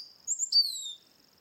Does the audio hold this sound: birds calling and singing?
yes